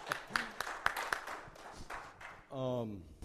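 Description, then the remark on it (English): Scattered, uneven hand claps from a small audience applauding themselves, sharp individual slaps rather than a dense roar, fading after a couple of seconds as a man's voice starts talking loudly. “You guys need to clap for yourselves.”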